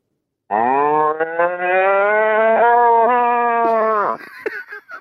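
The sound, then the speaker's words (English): A man's voice imitates a cow, like a cow in labour, for an animal-noise guessing game, with one long, loud, low moo held steady for over three seconds before dropping off abruptly, followed by a few faint breathy sounds. “Not only is that a beautiful cow sound, but that's a cow in labour, my friend.”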